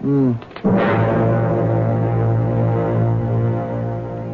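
A vacuum cleaner, taken out to clean a cab, kicks on with a sudden burst, then runs loud and steady, a constant low droning hum with a buzzing whine on top for several seconds.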